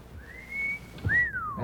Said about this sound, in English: A wolf whistle. Might be a wolfhound. Russian wolfhound, yeah.